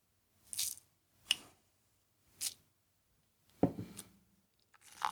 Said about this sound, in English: So, you crack open the jar. There's all these little coffee granules in there. We'll spoon some out into a cup.